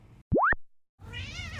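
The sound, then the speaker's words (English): A cat named Riff Raff meows: a short, rising chirp-like call, a brief pause, then a longer, wavering meow. No one talks. “As a matter of fact, I am going to play a clip of when Riff Raff and I were having a little conversation because I was actually able to record part of it.”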